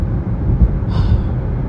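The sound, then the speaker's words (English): Steady, low engine and road rumble from inside a moving car, continuous and fairly loud, with a brief faint hiss of passing traffic partway through. No one speaks. “Come on, car, get over.”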